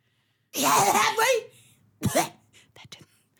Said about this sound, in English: What? Sorry, you coughed and... You all right?